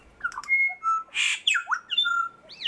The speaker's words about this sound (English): Like each syllable now has a label, which means I can compare two birds and see if they are singing the same type or not.